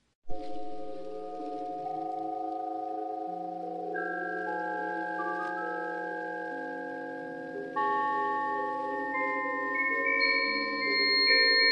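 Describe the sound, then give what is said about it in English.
Eerie music translated from spider web vibrations: layered, sustained electronic tones that shift in steps and climb, ending with shrill high-pitched notes over a low drone. No one speaks. “Okay, now they made music with this spider web.”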